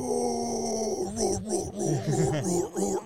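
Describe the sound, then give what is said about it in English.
A person imitates a dog barking: a drawn-out, gruff growl leads into a quick run of short, rough woofs, all voiced rather than from a real dog. “His bark isn't deep like that. Yeah, that dog goes...”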